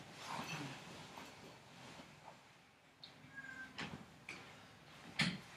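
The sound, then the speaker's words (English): A cat meows softly a few times against a faint, noisy background, with a couple of sharp knocks near the end and no one talking. “The gypsy cat.”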